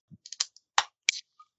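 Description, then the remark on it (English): A tin of beer that has been sat in the fridge is cracked open: a few light metallic clicks and scrapes, then a sharp pop followed by a short fizzing hiss. No one speaks. “So yeah, do you want to crack this bad boy open?”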